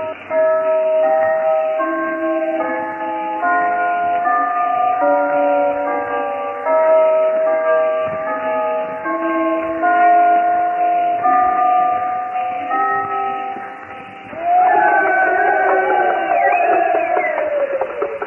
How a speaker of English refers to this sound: Oh, listen to the bells now ringing over hill and dell.